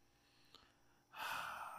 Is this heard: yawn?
yes